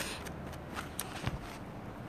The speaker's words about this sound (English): The scritching of your pencil. Yes.